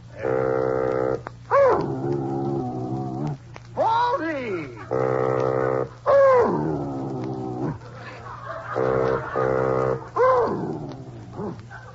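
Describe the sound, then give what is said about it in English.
A dog howls in long, wavering rising-and-falling wails along to sustained, reedy bassoon notes played by a person, the two trading and overlapping in loud phrases with a steady low hum underneath. “Baldy, you're singing.”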